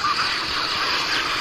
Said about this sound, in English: So I'm going to go down and talk to one of the ducks right now, folks. So this has never been done before as far as I know. Okay, I'm coming down to the pond here.